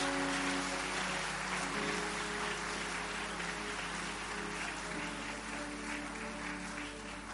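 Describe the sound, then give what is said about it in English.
An audience claps steadily and continuously as a clap offering during a sermon, a dense wash of many hands at fairly even loudness for several seconds, with no voices standing out above it. “Increase that clap offering for me.”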